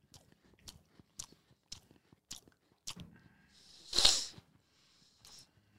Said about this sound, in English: Excuse me, I'm eating.